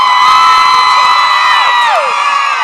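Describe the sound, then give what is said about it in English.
A large audience at a question session cheers loudly to vote by applause for which side asks the next question, a dense wall of high-pitched screams and whoops sustained for a few seconds, with some voices sliding downward near the end. “Oh, we're going to go by audience applause.”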